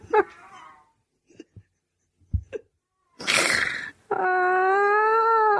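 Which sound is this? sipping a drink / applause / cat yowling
cat yowling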